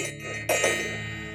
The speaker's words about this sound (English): So before we start, I'm going to go ahead and just set our space. I'm going to ring our bell.